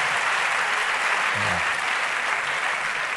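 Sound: audience clapping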